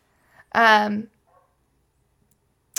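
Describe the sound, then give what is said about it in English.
A single loud dog bark rings out, a half-second harmonic yelp that stands alone in otherwise quiet, followed by a brief click. “I don't know which dog that is.”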